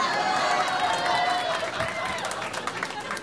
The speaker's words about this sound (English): So funny, because the women clap and cheer.